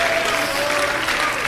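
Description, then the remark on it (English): Dense, sustained applause from a large church audience clapping in worship, steady and loud throughout, with a faint sustained tone running beneath the clapping. “If you believe that, clap your hands unto the Lord and shout with a voice of victory.”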